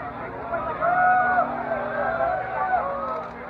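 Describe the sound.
A large crowd of hundreds of people roars outdoors on the streets of rural Kozhikode, booing and shouting at a woman walked by police, in a dense, continuous din of overlapping voices, with loud shouts and drawn-out jeering calls rising above the noisy babble throughout.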